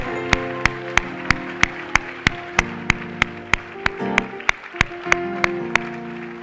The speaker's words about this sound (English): Come on, why don't you clap your hands? Come on.